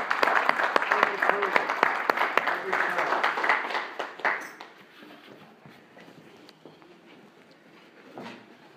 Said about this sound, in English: Thank you. Thank you. Let's give these guys a hand.